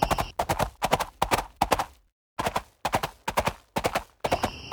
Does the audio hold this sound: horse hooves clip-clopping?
yes